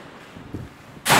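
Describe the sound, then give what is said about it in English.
An apartment building door is accidentally slammed shut on a hot day, a sudden loud burst of crashing noise after a few soft shuffling thumps, with no one speaking. “Oops! Slammed the door, not on purpose.”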